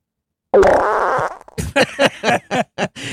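sound effect, fart sound effect

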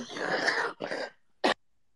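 human body sound, coughing and throat clearing

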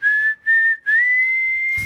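human body sound, human whistling

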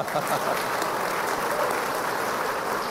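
crowd, audience applause

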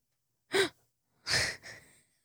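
human body sound, exaggerated gasp

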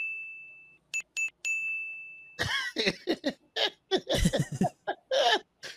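sound effect, bell ding sound effect

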